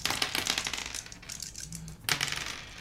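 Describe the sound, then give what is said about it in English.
Dice clatter and tumble across a tabletop in a rapid burst of clicks, pause briefly, then rattle again before settling. Fairly loud, with no talking. “Roll your dice and subtract whichever color is lower from the higher number.”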